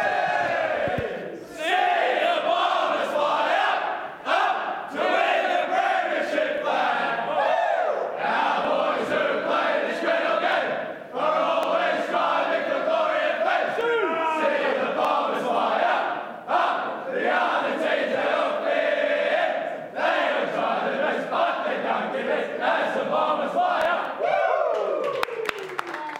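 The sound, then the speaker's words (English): The Essendon football team belts out its winning song together in the change rooms after a win, a loud, rowdy group chorus of shouted singing that carries on steadily for nearly half a minute with scattered cheers. “We'll leave you with the winning song from the Essendon Change Rooms.”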